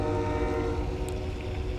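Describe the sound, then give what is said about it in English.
A loud train horn sounds in one long, steady blast, its layered tones holding at an even level from start to finish with no voices present. “I am a train and I am pulling a lot of weight."”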